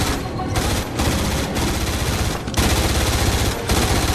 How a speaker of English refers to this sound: No, run away from the gunfire. Away from the gunfire, you fools.